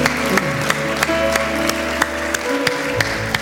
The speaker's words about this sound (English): Can we give these two individuals that raised their hand a huge round of applause? Yeah.